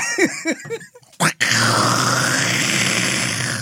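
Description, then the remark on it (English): Someone chokes and sputters after inhaling water: a quick run of strained, gurgling grunts, then a sharp cough burst, followed by a steady rough hiss as they struggle for breath. “Yes, I just I inhaled water. Not good.”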